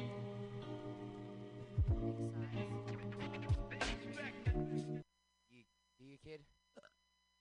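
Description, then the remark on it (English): A low, steady electrical hum drones beneath voices for several seconds as the room goes pitch black, then cuts out, leaving near-silence with a few brief voice fragments. “The room turns pitch black. We hear a hum and see a black.”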